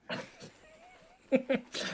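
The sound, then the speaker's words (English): Short burst of cats fighting: a thin drawn-out yowl, then sharp snarling cries and a harsh hiss at the end, fairly loud. “Cat Fright!”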